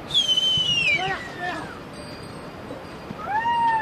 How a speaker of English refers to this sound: A dozen yaks lumber across a narrow bridge swinging gently over a river canyon in the Khumbu. Nakle! Herders urge them on with whistles and shouts.